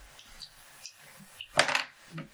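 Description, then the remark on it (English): Keys jingle as they are pulled out: a few faint metallic clinks, then a brighter rattling burst near the middle, and one last soft clink. Nobody speaks. “As you pull out all of your keys, I'm just literally just gonna go.”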